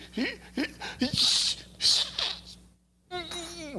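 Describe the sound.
A person mimics a stifled sneeze, imitating holding one back when around people: a few catching breaths build up, then a muffled, hissing burst held back through the nose, followed by a short pause before talking resumes.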